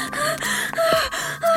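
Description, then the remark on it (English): Rapid, heavy panting of a rabbit character who has just sprinted over: a string of loud, breathy gasps in quick succession, some with a slight voiced edge, with no talking. “Sheriff Labrador was about to call Officer Doberman when Miss Lop Rabbit sprinted over, panting.”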